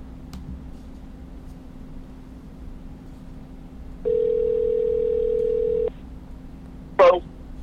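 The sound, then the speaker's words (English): A telephone rings once with a steady electronic tone lasting about two seconds over a low background hum, followed shortly by a brief click like the line being picked up. “Phone, you can ring now.”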